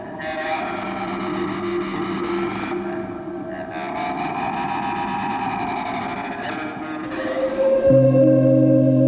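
A loud, dense music track drenched in echo and distortion effects, with sustained layered tones throughout and a heavier low drone kicking in near the end.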